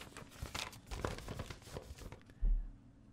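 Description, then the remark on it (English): Busy paper rustling and crinkling with sharp tearing bursts for about two seconds, then quieter handling and a low thump near the end. “I love that sound of paper rustling. It sounds like progress.”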